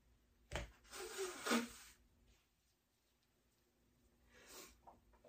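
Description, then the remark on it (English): Someone blows their nose: a sharp opening burst, then a long, forceful honking blow, followed a few seconds later by a shorter, quieter sniff-like blow. “I had to blow my nose.”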